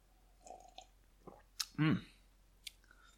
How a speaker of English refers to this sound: I need a sip of bourbon.